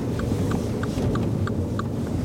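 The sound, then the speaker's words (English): A car rolls slowly down a residential street, pulling left into a cul-de-sac, its engine a steady low rumble, with a regular light ticking like a turn signal repeating throughout. No one speaks. “pulling left into the cul-de-sac. Kenny used to pick me up here. Let's drive right down.”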